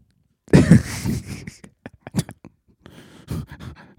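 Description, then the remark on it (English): Several harsh coughs in an irregular sequence: a strong fit at the start, then a few shorter, scattered hacks and a final burst, with no talking. “Hey, why are you coughing?”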